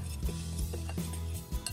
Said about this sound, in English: Now here, you can use a spoon, a fork, a whisk. Just you wanna mix it all together. So all these dry ingredients together and just set this aside.